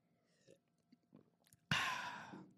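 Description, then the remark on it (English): Someone takes a sip of their water, with a few small wet mouth clicks and swallows, followed by a loud, breathy exhale. “I'm going to take a sip of my water.”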